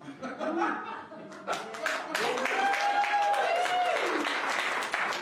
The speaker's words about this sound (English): You can clap. That's okay. You can clap.